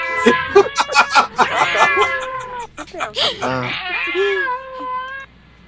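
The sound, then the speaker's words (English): Several kittens meow repeatedly, their high, wavering cries overlapping in a busy chorus before tapering into a few longer, drawn-out mews. “Now it's time for the wheel of animals. Kittens tonight.”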